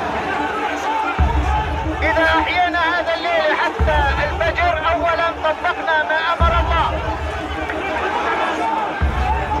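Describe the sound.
A dense, huge crowd hubbub of many overlapping voices at Al-Aqsa in East Jerusalem on one of the holiest nights of Ramadan, with shouts rising out of the babble and a low rumble that repeatedly drops in and out, steady and loud throughout.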